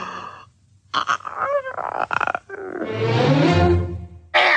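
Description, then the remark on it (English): A woman's voice imitates a cartoon cat, Lucifer from Disney's 1950 film Cinderella, voiced by June Foray: a few short yowls and snarls, then a long, rough, rumbling growl that swells loudly before a sudden final hiss. “Now, Cinderella is nominally about Cinderella, but a lot of the movie focuses on a devious cat named Lucifer, which was voiced by June Foray.”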